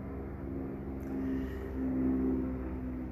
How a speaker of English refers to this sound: If you can hear that, I'm outside. that is like an airplane, I believe.